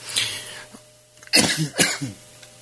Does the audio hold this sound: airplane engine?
no